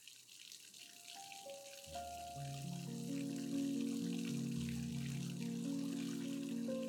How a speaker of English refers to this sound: The bath is filling up now. Test the temperature. How does it feel? Just hot enough.